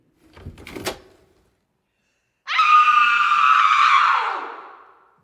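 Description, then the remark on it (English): A short rattling clack as a latch releases, followed after a pause by a long, loud creaking squeal that slowly drops in pitch as a door swings open on stiff hinges. “As if I would need a combination to open the door.”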